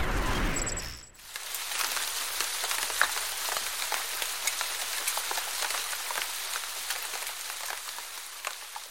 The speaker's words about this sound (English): It's so rainy outside. It's in New York